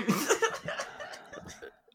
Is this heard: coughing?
yes